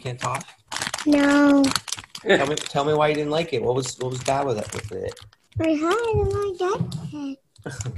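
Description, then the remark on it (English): A girl eats crunchy cheese puffs, with a bag crinkling in short, irregular bursts under a conversation between an adult and the girl, who answers in brief, reluctant replies. “Bit, we planned this bit to go a little better with her being more talkative, but at least you can hear her eating cheese puffs in the background.”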